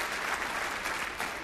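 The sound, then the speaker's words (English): A church audience claps steadily after the preacher asks for a clap during a sermon, a dense, even wash of many hands with no distinct individual claps, sustained at a constant loudness throughout with no voices standing out. “Can I get a hoo-yah or a clap or something?”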